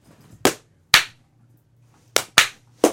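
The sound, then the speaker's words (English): Five sharp, loud hand claps, spaced in a loose rhythmic pattern with a longer pause after the first two, over a faint low hum. “No, there's too many claps.”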